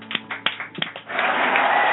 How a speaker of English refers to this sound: Early applause.